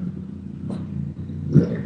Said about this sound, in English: And there's a motorcycle outside.